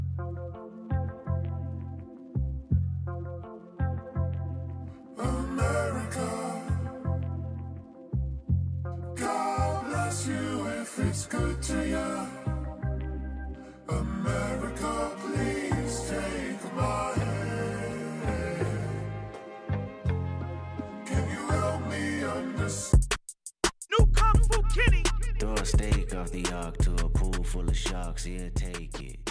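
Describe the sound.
A hip-hop track opens with a steady, heavy beat and sung vocals over layered music, then switches near the end into a denser, louder section with rapid rapping over booming bass.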